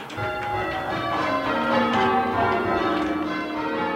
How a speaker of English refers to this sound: You see these giant wooden wheels with these hundreds and hundreds and thousands of pound metal bells swinging back and forth wildly.